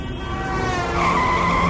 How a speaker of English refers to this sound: In a car crash.